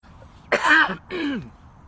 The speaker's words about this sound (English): And I'm going to cough.